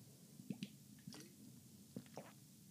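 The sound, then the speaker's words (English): Someone takes small sips of water: a few quiet, wet slurps and swallows in short bursts, with brief pauses between them and no talking. “Okay, so I'm going to get a drip of water.”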